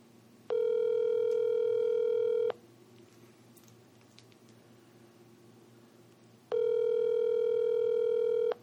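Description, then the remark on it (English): An outgoing phone call rings through the earpiece: two long, steady electronic ring tones, each about two seconds, separated by a pause of several seconds, clear and prominent over faint background hiss. “Yeah, but you gotta hear the ringing.”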